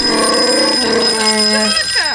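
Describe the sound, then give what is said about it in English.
A telephone rings with a steady, bright electronic tone, loud, filling the short moment with layered harmonic pulses before fading into a sliding warble at the end. “Let's see who's on the phone.”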